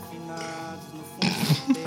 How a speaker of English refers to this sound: All right, I have to sip a tea after that. That was a nasty tea burp. Oh my goodness.